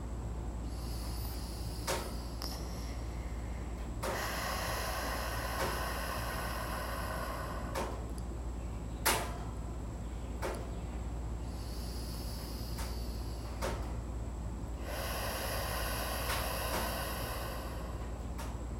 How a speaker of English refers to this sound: So let's close our eyes. Let's take a deep breath. Exhale through our mouth. Let's do this 3 or 4 more times.